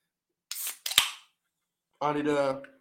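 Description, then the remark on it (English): A Pepsi Max can cracks open: a short hiss, then a sharp metallic pop with a brief fizzing burst. A moment later a person lets out a drawn-out voiced sound. “I'm going to open this Pepsi Max.”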